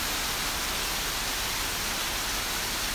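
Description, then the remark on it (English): Steady rain falls in a park, a dense, even hiss with no breaks or distinct drops standing out, continuing unchanged throughout with no voices. “enjoys a rainy day in the park”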